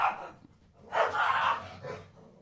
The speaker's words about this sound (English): Sounds like someone's being murdered. There's Mortal Kombat going on. Do you hear our dogs freaking out,